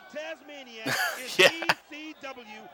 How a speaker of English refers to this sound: Oh, the ring bell to the back. Holy shit. I love the ring bell.